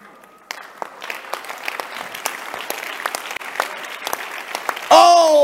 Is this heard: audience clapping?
yes